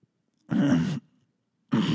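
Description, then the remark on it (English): Two harsh, loud coughs, each a rough burst about half a second long, separated by a moment of silence; the second is cut off at the end. Nobody speaks. “This is just, I was coughing. The recording's over and I was just coughing.”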